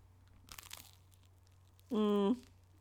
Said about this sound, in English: It's soft. I mean, honestly, I heard the crunch. I mean, the outside. The crunch is there. The crust is crunchy. The crust had a good crunch. But yeah, that's because the crust didn't get butter on it.